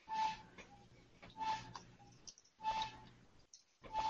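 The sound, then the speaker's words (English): A clothes dryer squeaks in a steady rhythm, a short high-pitched squeal with a scraping rush repeating roughly every second and a half, with no voices. “I think my washer's my dryer's squeaking.”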